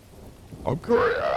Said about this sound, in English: I'm going looking at the decibels. Oh, I got the decibels. The storm's close, though. They said that we're right in the track of the tornado.